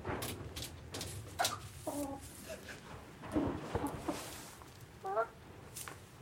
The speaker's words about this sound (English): You know, just the general clucking and sort of crooning and everything is... It's lovely, isn't it? It's such a relaxing sound. Yeah. It sounds like they're relaxed.